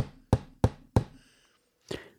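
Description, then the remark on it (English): A gavel, used by a club's president pro tempore to call order, bangs three times in quick, even succession, sharp wooden knocks, then after a pause one more slightly softer strike, with a faint ringing tone between. “I shall try to bang with more alacrity.”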